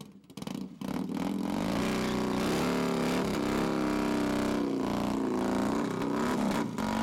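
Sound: motorcycle engine revving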